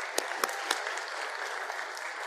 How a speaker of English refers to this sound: So even though we don't normally do this, we do want to honor you. So we're just going to clap real quick to honor the grandparents who are in this room. So if you would join me.